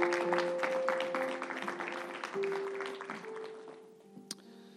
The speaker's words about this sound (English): Let's praise God. If that word blessed your life, Let's praise him with a hand clap.